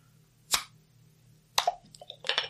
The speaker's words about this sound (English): 7% alcohol, 20 IBUs, brewed with maple syrup, and like I said, brewed and bottled Backwoods Brewing, Carson, Washington. All right, so let's crack this baby open. Got a 22-ounce here.